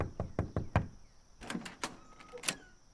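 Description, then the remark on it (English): Five quick, firm knocks on the door of a home, evenly spaced, as someone knocks again, followed by a few scattered clacks and rattles, as if a latch or door is being handled. “Here, let me knock again.”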